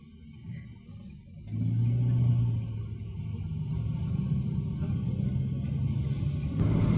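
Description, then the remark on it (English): Steady low engine and road rumble inside a moving autonomous car steering itself along a route, swelling after a quieter start and holding a continuous drone as the vehicle drives on, with no talking. “We're setting off. The steering wheels are going steadily. We've got another car coming in. Vehicle's going steadily.”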